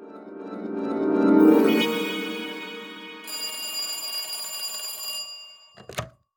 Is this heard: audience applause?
no